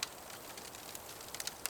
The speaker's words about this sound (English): As our hero's focus becomes more and more intense, the sound of the crackling fire fills his ears. The flames are louder than any noise around him. It drowns out the crickets and the wind.